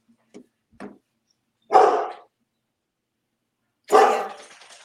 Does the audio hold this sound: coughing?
no